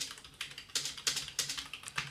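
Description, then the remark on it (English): Rapid typing on a computer keyboard as a person writes a reply to a message, a quick irregular run of crisp clicks and key taps, with no voices present. “I will just write back to her.”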